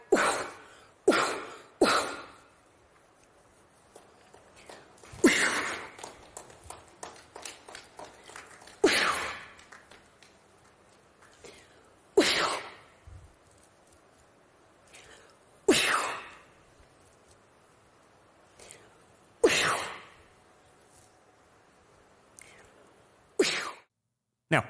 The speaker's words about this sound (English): And guys, meanwhile, there's a lot going on at Davos, including some truly weirdo shit. Check out this ritual where a woman coughed into people's faces.